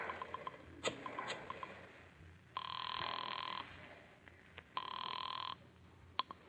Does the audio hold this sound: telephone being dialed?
yes